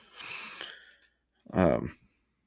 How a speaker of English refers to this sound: He's snoring back there. It's obnoxious, but at least he's sleeping.